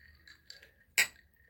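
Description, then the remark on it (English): A single bright clink of glasses of soda touching in a toast, sharp with a short ringing decay, with no talking. “Cheers to $3. Oh wait, yeah, cheers.”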